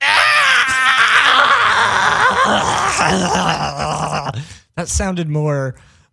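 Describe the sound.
A person imitates a gremlin-like creature, producing loud, strained growling and gurgling vocal noises for several seconds, breaking briefly before a final wavering, high-pitched cry.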